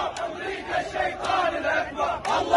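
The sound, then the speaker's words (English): A large pro-Hamas crowd heading toward the U.S. Embassy in Baghdad, Iraq, chants and shouts "America is the greatest devil" in unison, a dense, steady roar of many voices with rhythmic swells and a few sharp bursts rising above it. “Oh, by the way, if you're wondering what these people are chanting, they are chanting, I quote, America is the greatest devil.”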